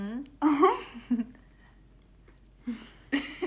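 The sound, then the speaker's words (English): Moist chewing of a soft bite of blueberry pie from Pie Day, heated in a toaster oven, with a few squishy, irregular bursts of mouth noise separated by brief quiet gaps. “So I'm taking a bite of the blueberry pie from Pie Day.”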